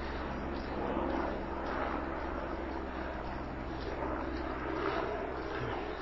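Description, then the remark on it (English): A helicopter drones overhead in a steady, continuous low rumble with a throbbing rotor hum, holding at a fairly even loudness for the whole stretch. “I've got the helicopter with Cuffer Company again.”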